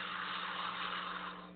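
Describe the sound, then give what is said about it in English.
A slow, deep exhale during a breathing exercise: a steady, airy breath of even strength that tapers off at the end, with no one speaking and a faint low hum underneath. “Once again, inhale. Now exhale slowly.”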